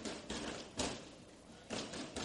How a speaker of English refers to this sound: I'm hearing some knuckles. I ain't seen no blood coming out the knuckles, so looking good. No splinter in those knuckles. Yeah, these young men right now, they're very tight and sharp, the drill team. And they're stepping. They're stepping good, too.